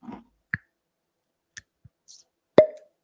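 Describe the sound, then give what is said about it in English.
A wax-sealed Found North bottle being opened, the wax top cracking off to reveal a brown wood cork, before pouring: a few soft clicks and small plops, then a sharper hollow pop with a brief ringing tone at the end. No voices. “I wouldn't normally be happy about this, but my wax top came off right away.”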